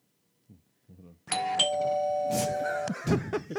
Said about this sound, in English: So we're going to ring the doorbell to the new year. Yeah, ring the doorbell to the new year. Ring that shit.